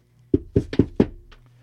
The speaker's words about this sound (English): What? This is the most regular fucking knock.